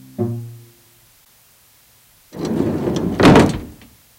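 The sliding door of a van painted forest green rumbles along its track for about a second, then shuts with a loud, solid thud, after a brief high squeak at the start.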